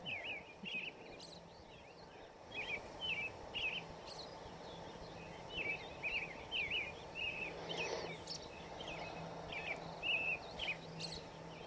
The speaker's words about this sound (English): The Robins are giving most of the Dharma talk tonight.